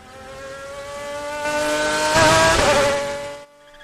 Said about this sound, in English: That's a fucking... Is that a Lamborghini? A Ferrari? It's some fucking high-end sports car. I don't even know. I'm too poor to even know what the fuck that car is called.